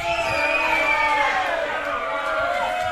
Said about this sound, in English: I want it to be loud. Let's bust out the light bulbs with this, okay? You got to cheer for your champion on the count of three. Are you ready? 1, 2, 3.